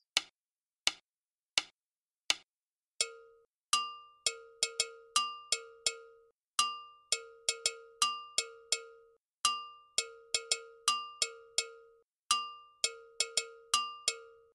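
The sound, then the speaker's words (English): Two metallic bell parts, including a gonkogi, play together in a student ensemble, a higher and a lower pitched one, their sharp strikes interlocking into a busy, driving rhythm after a few sparse opening hits. No voices. “Listen to the two bell parts together.”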